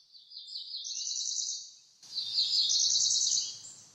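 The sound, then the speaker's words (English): Two high, buzzy songs of a cerulean warbler, a small songbird of about 4.3 inches, in succession, each a rapid trill lasting about two seconds and rising at the end, heard clearly with no talking, the second over faint background hiss. “Today's In Nature segment is about the cerulean warbler.”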